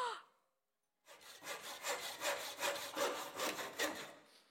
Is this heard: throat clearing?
no